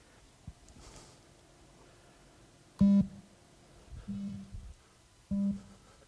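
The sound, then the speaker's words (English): Three low, steady electronic tones, played during a guided visualization exercise, sound one after another at roughly even intervals, each lasting about half a second, clear against a quiet background with no talking. “And then I'm going to turn on some tones up here.”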